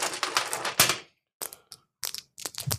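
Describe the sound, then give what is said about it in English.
Glass marbles click and clatter together in a hand, a dense burst of hard, bright taps followed by shorter scattered clusters with brief pauses, fairly loud with no talking. “So these, you can hear these. These have substance, right? Sound like dice, but they're marbles, glass.”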